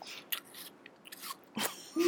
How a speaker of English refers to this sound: Guys, can you chew your apples like over there? That'd be great. Okay, I'll chew even closer to you.